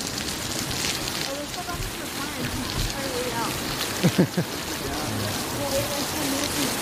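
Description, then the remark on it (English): Heavy rain pours down steadily in a dense, hissing wash, with a few brief louder knocks partway through and faint murmuring voices blended underneath. “It just started fucking pouring over here.”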